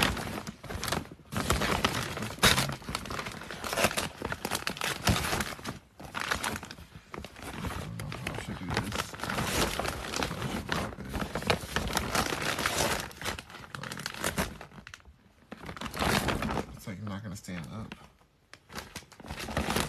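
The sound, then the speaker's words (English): Continuous crinkling and rustling of wrapping paper being handled and folded while wrapping holiday gifts, with occasional sharper tears and brief pauses, loud and busy throughout with some muffled voices underneath. “Wraps holiday Gifts Live”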